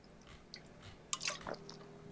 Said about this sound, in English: I'm going to take another sip. Another slurp.